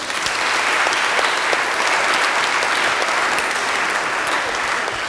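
An audience claps steadily throughout, a dense, even wash of many hands with crisp individual claps popping out, sustained at a fairly loud level for the whole stretch with no talking.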